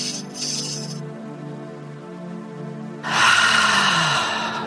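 A slow, deep breath drawn in through the nose with a soft airy hiss, then a louder, rushing exhale released through the mouth, over a low steady background hum.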